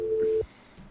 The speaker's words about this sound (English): Seems like someone got a dial tone. Yeah, it was just a random ass dial tone for a fucking house.